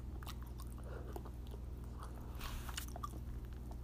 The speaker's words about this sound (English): eating some eggplant parm.